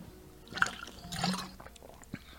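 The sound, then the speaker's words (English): Sipping bitter-tasting water: a wet slurp, a longer gulping swallow, and a final small smack of the lips, all quiet with no talking. “That water bitter as hell.”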